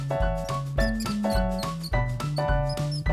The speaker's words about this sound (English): And the mouse squeaked. They drank special mouse champagne, ate lots of cheese, and squeaked the night away.